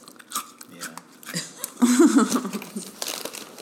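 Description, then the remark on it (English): Crunchy chewing of small Teddy Grahams graham cracker snacks, a run of crisp bites and mouth clicks, with a voice briefly talking over the middle. “Can you hear me chewing my teddy ground?”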